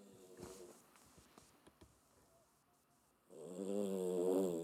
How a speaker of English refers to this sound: you probably can hear this dog snoring in the background, mate.